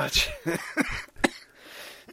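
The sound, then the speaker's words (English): A harsh run of about four sharp coughs in quick succession, uneven in rhythm, followed by a quieter breathy tail as the fit dies down. “That was quite a coughing fit.”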